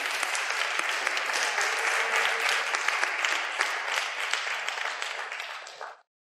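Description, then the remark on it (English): An audience breaks into steady applause for 12 people coming forward to the stage as the speaker leaves it, a dense wash of many hands clapping at a constant, fairly loud level for about six seconds before it stops abruptly. “So if 12 people could come forward, and if we all could give those 12 people a warm round of applause as I come off the stage.”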